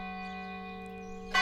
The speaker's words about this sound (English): The tolling of the church bell woke Abby with a start.